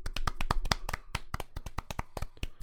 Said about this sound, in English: I'm just gonna clap real quick. I want to give props.